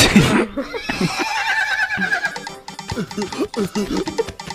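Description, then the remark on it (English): A horse lets out a loud whinny, a quavering high-pitched neigh lasting a couple of seconds, followed by people talking over some background clatter. “To the castle? Giddy up.”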